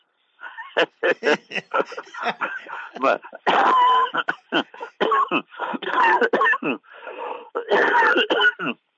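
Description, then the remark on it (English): A prolonged fit of harsh, wheezy coughing, loud, with rapid bursts separated by short gasps and throat-clearing, continuing for several seconds. “I saw the doctor, I started coughing.”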